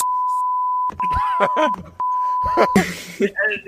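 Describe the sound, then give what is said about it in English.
A steady high-pitched censor beep tone runs in long stretches, cutting in over a voice speaking and groaning underneath, then breaking off as a noisy burst and further talk follow. “scared the cat by the beep sounds”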